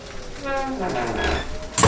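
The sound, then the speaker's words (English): A door in an old furnished house swings shut: a drawn-out, wavering creak that sinks in pitch, then a sudden loud thud as it closes. “The door closed.”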